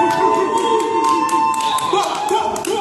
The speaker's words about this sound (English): Amazing Love Podcast 3-year anniversary. Can I get some woohoo and holla and some applause?